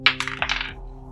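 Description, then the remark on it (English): Dice are rolled for an attack and tumble across a hard table, a quick clatter of several sharp bounces over about half a second that fades out as they settle, with no voices. “Roll your attack, sir.”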